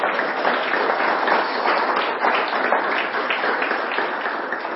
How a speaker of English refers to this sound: And so we're really excited to be able to support you financially through the church's mission budget and also to pray for you in your ministry in Toronto. So that's something, I feel like we should clap or something for that.